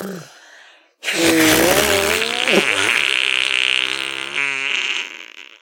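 Loud arm farts made by two people pressing their lips to the skin of their arms and blowing together, one long wet, buzzy blast stretching about four seconds with a wobbling pitch, ending in a fluttering sputter.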